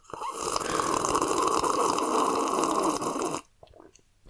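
A long, steady slurp of squash being sipped, a continuous airy sucking noise lasting about three seconds, cut off abruptly and followed by a couple of faint gulps.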